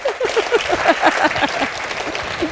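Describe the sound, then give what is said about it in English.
A crowd claps in a steady, dense round of applause, many hands overlapping in quick bursts that hold at a fairly even loudness for a couple of seconds. “Okay, let's give a round of applause. Round of applause.”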